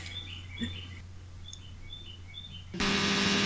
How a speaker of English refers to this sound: The f*** is that? A bird. It's spring here in St. Louis.